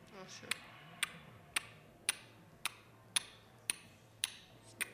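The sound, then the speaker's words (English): A steady, clock-like ticking: about nine crisp, evenly spaced ticks roughly half a second apart, prominent over a faint, murmuring background. “And you hear the ticking sound start again.”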